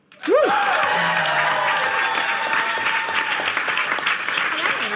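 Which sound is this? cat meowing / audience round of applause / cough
audience round of applause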